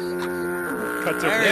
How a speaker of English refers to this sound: Air horn. No, I believe it's horn can. Horn can. I think you're right. It's a horn can. Horn in a can.